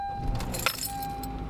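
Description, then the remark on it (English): Keys jangle in a few quick metallic bursts as a car is started, over a steady car engine hum with a faint whine running underneath. No one speaks. “I'll start this car.”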